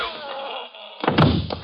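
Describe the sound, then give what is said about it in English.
A gun strikes a man's head: a few dull, heavy thwacks land in quick succession after a stretch of steady hissing noise, with no voices. “I'm going to wear that gun out, hitting people over the head with it.”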